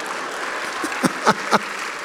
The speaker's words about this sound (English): You can applaud if you want to.